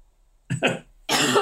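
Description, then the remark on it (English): A loud coughing fit: two quick harsh coughs back to back, a brief pause, then a longer raspy burst of coughing. No speech alongside. “Having a coughing.”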